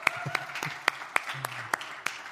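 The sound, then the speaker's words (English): Scattered applause from a church audience at the end of November 2020, clapping that 2020 is one month from being over: a handful of sharp, distinct claps landing in a loose, fairly steady rhythm, with a faint low murmur underneath. “And how many of us would just give a round of applause to know that 2020 is only 1 month away from being over?”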